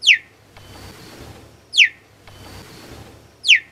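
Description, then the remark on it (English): A cheetah chirps three times, each call a sharp, high, bird-like yelp sliding downward, spaced evenly about every second and a half over a faint background hiss. “But their chirping is actually very interesting because it can be heard quite a distance away.”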